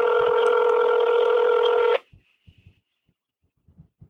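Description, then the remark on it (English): A telephone touch-tone sounds loud and steady for about two seconds as a phone number is dialed, then cuts off abruptly, leaving only a few faint clicks and handling noises. “If this is a real phone number, I'm going to have to explain to them that it's supposed to be the loser line.”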